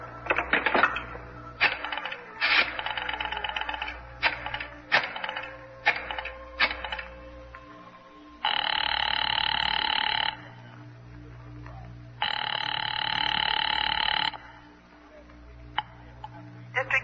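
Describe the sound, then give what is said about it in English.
A telephone is dialed to call an office, with a rapid series of sharp mechanical clicks, then rings twice with long, loud, buzzing trills separated by a short pause. Nobody speaks. “You mind if I use this phone?”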